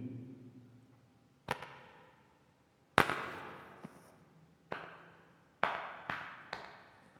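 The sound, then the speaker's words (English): A man slaps and pats his own face with one hand while holding onto a bar with the other: six or seven crisp, irregular smacks, some sharper than others, with quiet pauses between and no talking. “Slap, slap, pat, pat, this is you. Here's your face.”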